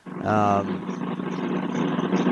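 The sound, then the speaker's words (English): A motorcycle engine roars loudly with a brief rising buzz, then its rumble carries on as a steady drone as it drives by outside. “Oh, I heard a motorcycle drive by.”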